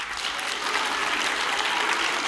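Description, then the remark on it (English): Women of an audience clap hands in worship with eyes closed, a dense, steady wash of applause, loud and sustained throughout with no pauses, the individual claps blurring into a continuous crackling roar. “We're going to do it again, but this time I want you to use your voice to talk to the Lord, to love on the Lord while you're clapping.”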